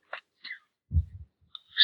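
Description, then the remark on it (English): A single low, fluttering snore from a man rumbles for about a third of a second, fairly quiet, set between a few short, sharp breathy sounds. “He's snoring on the podcast.”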